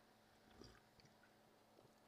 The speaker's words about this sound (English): Thought I'd take a quick sip of that.